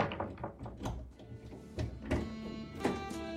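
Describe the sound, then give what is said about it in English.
A door thuds shut, followed by a series of sharp clunks and clicks as several locks are thrown one after another, with no one speaking. “I rushed up, but the series of locks, a strangely familiar series of locks, was already being thrown.”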